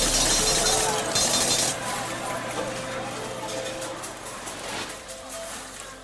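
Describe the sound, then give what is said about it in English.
A cash register cha-ching sound effect: bright, jangly metallic clinks and a ringing chime, loudest at the start, then a busy rattling wash that carries on for several seconds. “All right, the cha-ching of the cash register right there is what I'm hoping to be hearing later on tonight.”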